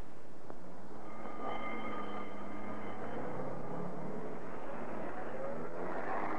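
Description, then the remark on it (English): An ambulance engine rumbles steadily and loudly as the vehicle pulls away, driving off to the local hospital, a continuous motor drone with shifting tones and no voices. “The ambulance drove off to the local hospital.”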